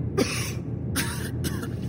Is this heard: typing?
no